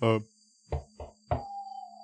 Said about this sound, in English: I would be happy to knock on the door.